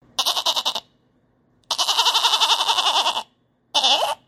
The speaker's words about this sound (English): What did you think about that one? Was that one a sheep or a goat? Yes, that one was a goat as well.